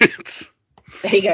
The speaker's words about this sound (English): I keep having to mute my microphone because I keep sneezing. Here I go again.